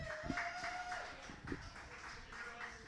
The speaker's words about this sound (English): Those are your poets. Applaud them now.